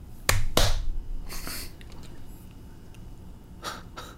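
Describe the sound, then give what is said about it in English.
Two sharp hand claps in quick succession, crisp and fairly loud, followed by a few softer rustling bursts against a low background hum. “The bespectacled priest claps his hands again. Oh. This time he does it twice.”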